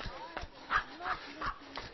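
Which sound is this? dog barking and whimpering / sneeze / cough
dog barking and whimpering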